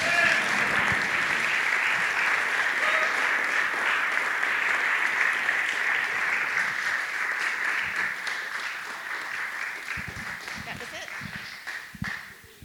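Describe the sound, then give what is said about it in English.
Sustained audience applause at a Story Slam storytelling event for the next storyteller, dense, steady clapping that holds for several seconds, then gradually thins and fades toward the end, with a few scattered claps trailing off. “But please clap your hands for”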